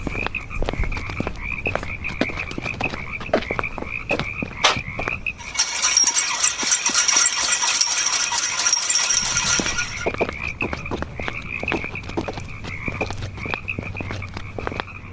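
Frogs croak in rapid, repeated pulses over a steady high chirping drone. Midway, a dense, louder wash of chorus swells for several seconds before the rhythmic croaking resumes. No one speaks.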